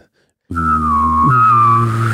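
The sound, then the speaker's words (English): A loud mouth whistle holds one wavering pitch for nearly two seconds, with a buzzing, vibrating quality and a low hummed drone beneath it. It starts abruptly after brief silence. “I was like, dude, you just like, like you just it's go, a vibrating whistle.”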